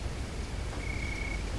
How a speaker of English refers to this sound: The crickets seem louder than before.